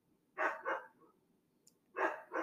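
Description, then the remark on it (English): A female dog named Gypsy barks outside in two quick pairs, four sharp woofs with a pause between the pairs, moderately loud. “I'm wondering what the fuck she's barking at out there.”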